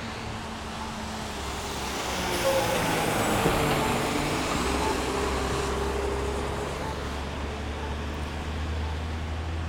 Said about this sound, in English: We're hanging out here, trying to cross 36. Uh-oh, trash truck. Uh-oh.